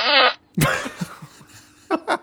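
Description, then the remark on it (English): A loud, reedy buzzing fart gives way to a wet, sputtering blast that trails off in a string of short low pops, followed by two quick brief bursts. “Fart hole three.”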